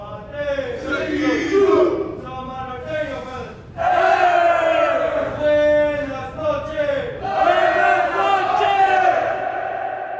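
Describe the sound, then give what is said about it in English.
A group of Samoan prison inmates yell together in loud, sustained, rhythmic chant-like bursts, voices rising and falling in unison over about ten seconds, with a brief dip before the shouting surges again, performing their nightly shutdown ritual in prison reception at lights-out around 10 o'clock. “That's the Usos, the Samoan cats, doing their shutdown.”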